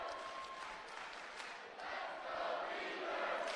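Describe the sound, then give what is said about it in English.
A large home stadium crowd at a football game, standing as their team leads 68-28 over Montana State, chants "Let's go Beavers" in unison, a loud, sustained roar of many voices swelling slightly louder toward the end, with no clear pauses between chants. “Let's go Beaver chants raining down as they are about to improve to 3-0.”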